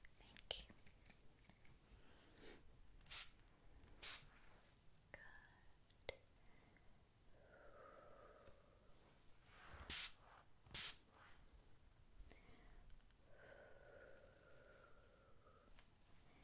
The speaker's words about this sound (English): So now I'm going to apply some rose water to your face. I'm going to spray it. So can you close your eyes?